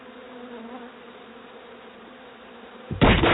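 A swarm of bees buzzes in a steady, wavering drone for about three seconds, then a sudden loud burst of harsh noise cuts in at the end.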